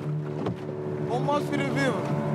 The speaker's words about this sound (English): Okay, the boat is bouncing quite heavily now, and I'm getting a little bit scared. You can probably hear it on the hull. I'm just taking a quick trip around a bay in this little boat